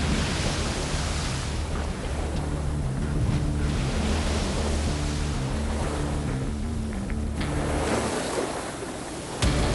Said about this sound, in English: We took a wave on the side and everything literally came down. Pandemonium.